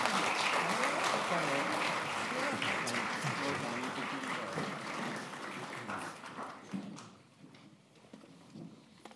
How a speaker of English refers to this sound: Can we have a round of applause as they go back to their seats?